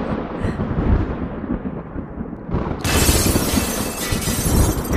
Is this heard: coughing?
no